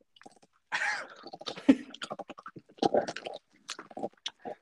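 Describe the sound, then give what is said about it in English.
Loud, sharp crunching of a chip being bitten and chewed, a rapid irregular series of brittle cracks and snaps with short pauses between bursts, and no talking. “Well, look, I'm about to eat this chip. Tell me how loud it is.”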